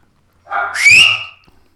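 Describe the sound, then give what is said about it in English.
A single loud, piercing human whistle made with an index finger, lasting about a second, sliding upward in pitch with breathy noise around it, heard alone with no talking. “I'm a pretty good whistler.”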